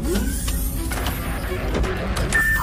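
door opening

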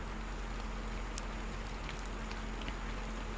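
rain falling

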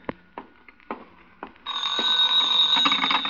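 telephone ringing

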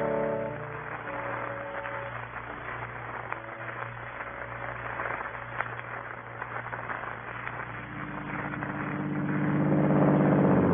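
car engine driving off

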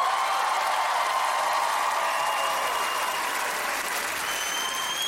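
audience applause

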